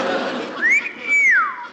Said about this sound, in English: What on earth was that? It's that sailor on the corner. He's whistling.